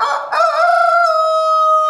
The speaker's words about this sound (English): We have 115 roosters. Well, no wonder it's so noisy around here. It is very noisy.